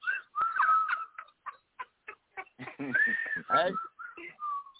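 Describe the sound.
A person whistles a quick, warbling tune: a sustained opening note, then a run of short staccato chirps, and wavering, voice-like swoops near the end, loud and close.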